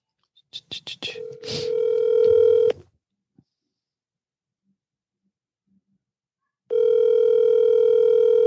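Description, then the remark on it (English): A quick series of short dialing beeps as a phone call is placed to a wife live on a show, then a steady electronic ringing tone sounds, falls silent for a few seconds, and rings again, loud and even-pitched. “Should I call my wife right now? Live on the show.”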